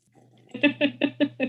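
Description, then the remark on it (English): Someone sips coffee, taking five quick, evenly spaced gulps in a steady rhythm, each a short moist burst after a faint lead-in, with no talking. “So it's not just me reading with silence and hemming and hawing and sipping on my coffee intermittently, which I can do right now, just a second.”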